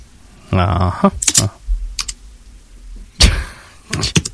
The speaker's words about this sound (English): When you pound on your keyboard, it's quite loud. Oh, really? I didn't know you could pick that up.